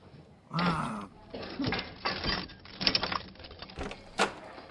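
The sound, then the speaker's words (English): A custodian's bunch of work keys jingles and rattles in several bursts, with metallic clicks and scrapes as one key after another is tried in the lock of his closet. “Which one of these damn keys opens his closet?”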